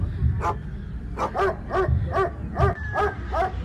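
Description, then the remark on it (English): A dog barks repeatedly in quick bursts, about seven sharp barks in a loose rhythm, over a low rumbling background noise. “In the eastern region town of Enum, you may never hear the barking of a live dog.”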